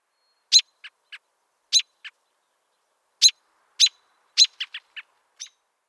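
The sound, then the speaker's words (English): A bird gives short, low-key chuck notes in loose clusters, each sharp call trailed by one or two softer, muffled notes, repeated irregularly over several seconds with no voices. “A mumbled chuck or toque.”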